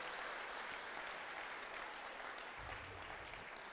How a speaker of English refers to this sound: Can we give a big round of applause to David and Goliath, everybody?